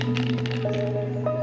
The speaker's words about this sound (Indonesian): Anda hirup segar kopi latte yang dingin. Kedengaran bunyi ais yang melanggar dinding cawan yang dibuat dari plastik.